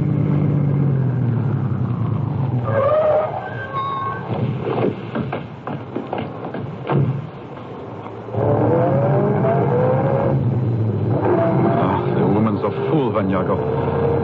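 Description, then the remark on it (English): A car engine hums steadily, then winds down and idles quietly as the vehicle comes to a stop, before revving back up and pulling away with a rising drone. “I shall stop the car now and let you off.”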